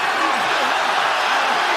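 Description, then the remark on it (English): A wrestling arena crowd roars and cheers without pause as Benoit locks Kurt Angle in the crossface, a dense, steady wash of many voices held at a loud, even level, with no single voice standing out. “Listen to this crowd.”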